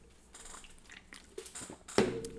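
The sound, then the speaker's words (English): Soft, wet sipping and swallowing noises over a quiet background, followed by a sharp clunk like a glass being set down near the end. No one speaks. “And then, dude, okay, sip break.”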